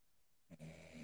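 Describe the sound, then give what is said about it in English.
A short snoring breath rasps in after a moment of near silence, a low rumbling, throaty drone with a faint buzzy edge, picked up over a phone call. “I think Grandpa had his headphones in, and we can hear him breathing.”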